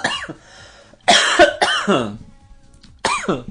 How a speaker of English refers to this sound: Okay. Literally just coughed on air. I know. But that's what I was telling you. I had to cough.